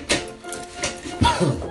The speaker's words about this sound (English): Here, let me close the door here.